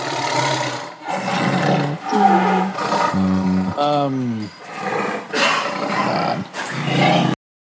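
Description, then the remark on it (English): A person imitates a large animal, making a run of deep, rumbling growls and roaring snarls, loud, with brief pauses between bursts over about seven seconds. “You hear the growl of a large animal from within.”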